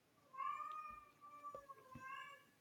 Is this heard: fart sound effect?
no